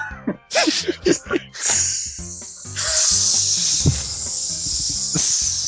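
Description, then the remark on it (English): Brief bursts of a voice give way to a long, steady hiss made by mouth, an imitated hissing noise that holds loud and breathy for about four seconds to the end. “Just makes a hissing noise.”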